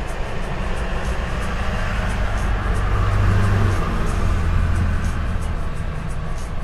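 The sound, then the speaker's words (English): A heavy truck rumbles past outside, its deep, steady engine drone swelling slightly at the midpoint before easing off, with no voices over it. “Tell me why I thought that was the minivan and not the truck.”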